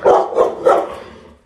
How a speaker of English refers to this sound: Excuse me, my dogs.